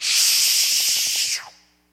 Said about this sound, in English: Boy, the dry cleaners have these great big steam presses. You know, you put the garment on there.